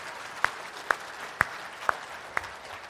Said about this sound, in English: If Jesus Christ is your living hope, would you give him a round of applause this morning?